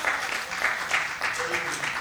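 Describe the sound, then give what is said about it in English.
A crowd claps steadily, a dense wash of overlapping hand claps at a constant level with no single claps standing out, a few faint voices mixed in. “You can clap.”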